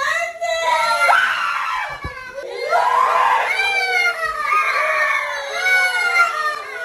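Children scream in high, piercing, overlapping wails that rise and fall continuously for several seconds, loud, with a brief pause near the middle before the shrieking resumes, as workers wearing masks intentionally scare them.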